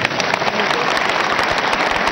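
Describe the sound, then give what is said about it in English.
A crowd claps for a woman, a dense, loud patter of many hands with no gaps, sustained for a couple of seconds without any voices. “Clap for her.”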